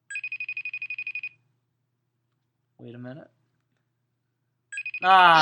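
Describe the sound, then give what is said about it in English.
A FaceTime video call ringtone trills in a rapid pulsing burst, pauses while a man briefly speaks, then starts ringing again as a louder sound cuts in at the end. “Still ringing. We're going to wait five more rings. FaceTime.”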